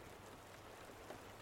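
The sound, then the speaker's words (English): Soft, steady rain falling, a continuous faint hiss of drops with no breaks and no voices. “Oh, I love the rain, the sound of it.”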